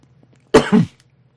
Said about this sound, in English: That coughing says enough.